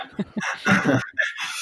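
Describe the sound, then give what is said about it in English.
A small dog whimpers and whines in a few short, high-pitched bursts with brief breathy gaps between them, and no one speaks. “It's my little dog.”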